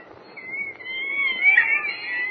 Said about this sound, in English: Listen to those monkeys chatter, Jimmy. They're the ones I was telling you about. Professor Nelson and Dr. Stone use them for experimental purposes.